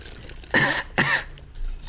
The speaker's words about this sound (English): What you coughing about? Is that I don't like that cough.